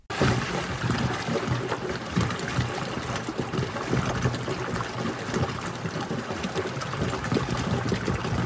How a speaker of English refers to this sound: This is the water of a spring that gushes out of a crack in a cliff in Zion National Park, Utah. Water pouring out of sandstone into the swirling waters of the Virgin River, into a slot canyon with 2,000-foot-high walls.